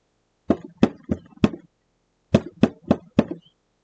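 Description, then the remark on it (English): Two sets of four firm knocks on a wooden basement door, evenly spaced, with a short pause between the groups. Clear, with no voices. “Knock On The Door”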